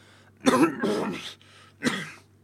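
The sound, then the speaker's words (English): A man coughs several times: two rough, raspy bursts in quick succession, a brief pause, then one more short, harsh cough. “coughs and pauses, mouth open, and furrows his brow.”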